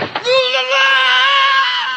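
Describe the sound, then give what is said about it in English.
A classic movie-style falling scream: one loud, sustained, high-pitched yell that holds for nearly two seconds and sags slightly in pitch, with no talking over it. “That's the classic … scream from... I lied”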